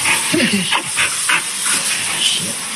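Dogs at a kennel give a series of short, sharp barks at an uneven pace, sitting over a constant loud hiss that fills the background.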